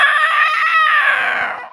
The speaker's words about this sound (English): She wheels around in time to see his pendant shoot out a jet of green energy at her. She howls in pain.